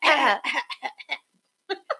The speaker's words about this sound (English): Oh! Let me clear my throat.